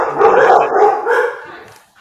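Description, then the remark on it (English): Dogs named Gozer and Vigo bark loudly, a quick run of three or four sharp barks in a row that tapers off at the end, with no one talking over them. “And, you know, sometimes dogs get demonically possessed.”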